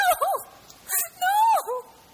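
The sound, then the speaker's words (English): A human voice imitates a drowning dolphin with high, wavering squeals and whistles that bend up and down in pitch, delivered in two main bursts with a breathy hiss between them. “No, I'm making, like, drowning dolphin noises right now.”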